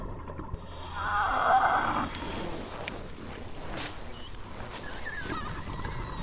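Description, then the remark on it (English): Scraping against the hull of the boat Wallaby fills the first seconds, followed by scattered clicks and a few thin, high-pitched screeches over a murky, rumbling background. “Sounds like some scraping on the hull of the Wallaby, and you start hearing that clicking sound again.”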